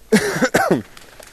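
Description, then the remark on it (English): Two quick, raspy bursts of coughing and throat clearing from the speaker leading a Bible study, fairly loud, one right after the other, then quiet. “And I did all that without coughing a whole lot.”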